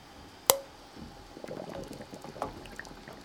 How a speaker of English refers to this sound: And now, the moment we've all been waiting for, it's time to lower the jars into the canner.